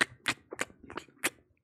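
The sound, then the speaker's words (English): A voice imitates wet sucking noises: about five quick, smacking slurps in an uneven rhythm, fairly loud, with no words spoken. “And then I hear the sound of just sucking, like...”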